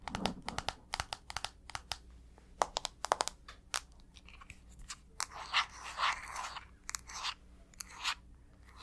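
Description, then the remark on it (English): Fingers tap and scratch on a phone: sharp, irregular clicks in quick clusters, then longer raspy scratching strokes, all fairly quiet with no voices. “Can you guess what object I'm tapping and scratching on? Right, my phone.”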